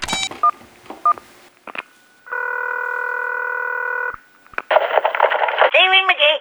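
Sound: telephone keypad dialing tones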